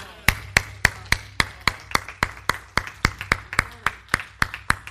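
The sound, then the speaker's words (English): An audience clapping during a sermon, in a steady, even rhythm, roughly three or four sharp claps per second that continue at a consistent loudness for the whole stretch, with a low hum underneath and no talking. “Why did you clap?”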